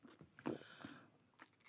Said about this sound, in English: You're sort of gulping it.